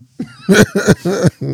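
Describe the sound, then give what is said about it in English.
A loud burst of dry coughing: four or five harsh, rasping coughs in quick succession, with no talking in between. “I'm over here dry coughing.”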